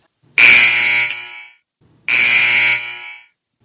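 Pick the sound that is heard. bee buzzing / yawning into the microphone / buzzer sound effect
buzzer sound effect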